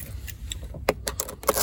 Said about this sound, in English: I grab my keys, I hop in my truck, I use the key fob, I get in my truck, and then, oh, okay, I'm gonna put the keys into the ignition.